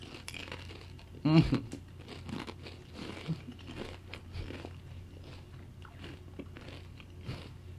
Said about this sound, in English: You coughing, bro? I'm laughing. It's a fucking ASMR episode at this point. I'm just chewing in the mic. That's what I was doing.